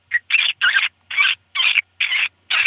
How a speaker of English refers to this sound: It sounds like a vole. This is vole squeaks.